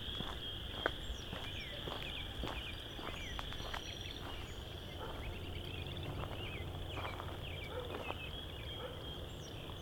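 A song sparrow sings, its quick chirps and trills scattered across a steady, high droning chorus of insects, with other faint bird calls mixed in.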